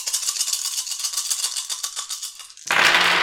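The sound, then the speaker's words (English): A handful of nine dice rattles steadily in a cupped hand or cup for a couple of seconds, then spills out in a louder, brief clatter, rolled as a dice pool in a tabletop role-playing game. No one speaks. “He will need to buy off the prone as a complication, and so is going to use his primary pool of 9 dice for rending and breaking.”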